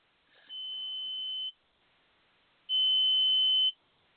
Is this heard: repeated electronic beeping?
yes